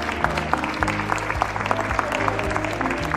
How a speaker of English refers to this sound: Come on, clap your hands.